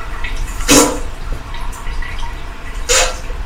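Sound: running water sound effect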